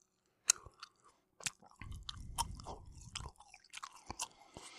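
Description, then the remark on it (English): Soft, wet chewing of a gummy watermelon candy, with moist smacking and squishing in an irregular rhythm, plus a few sharper clicks of the mouth; no one speaks. “The red, the actual watermelon portion, has a little more resistance to it, and it's almost like I'm chewing on a tongue.”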